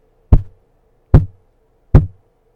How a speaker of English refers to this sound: So Butterball hid himself underneath the table, and soon there came three knocks on the door.